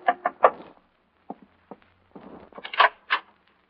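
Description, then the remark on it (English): Three quick, firm knocks on a hotel room door, followed by a few scattered thuds and shuffling sounds, like the door being opened and someone moving about. “I was in my hotel room packing when a knock on the door changed my mind again.”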